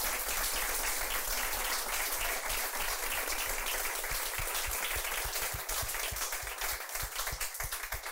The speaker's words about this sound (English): But quickly, could we just give a massive round of applause to our amazing panel?